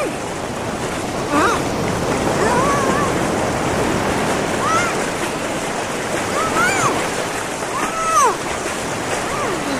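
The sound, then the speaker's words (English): Ocean waves pound and churn at Dumas Beach in a loud, continuous roar of surf with no pause, rising and falling slightly as the water keeps crashing. “Rima and Sushant combined their strength to drown Malavika, but the constant battering from the waves and their victim's spirited opposition did not make things easy for them.”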